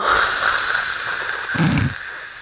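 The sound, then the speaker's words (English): A voice imitates a fart with a short, low, buzzy raspberry lasting under half a second, set against a steady breathy hiss. Nobody speaks. “I feel like when he farts, it's just.”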